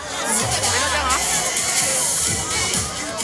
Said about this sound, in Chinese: 喺佢哋去紧中环途中，一班超星团嘅粉丝已经一早喺嗰度等候偶像，见到巴士驶到，佢哋都报以欢呼声，非常热情。